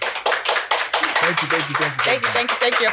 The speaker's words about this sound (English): You guys, there are plenty here. Clap, make noise. What's wrong with you guys? Come on.